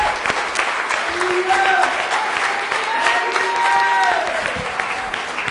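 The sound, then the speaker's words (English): A church audience at a worship service clapping their hands in a steady, dense patter that lasts throughout, with voices calling and singing over the clapping. “Everybody, start putting your hands together.”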